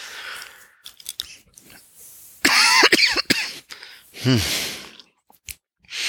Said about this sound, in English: Lots of coughing today.